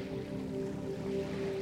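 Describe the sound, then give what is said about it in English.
Continuous wash of sea waves, a steady hissing roar with no pauses, joined by a low humming drone underneath. No voices. “I yelled at the unforgiving sea.”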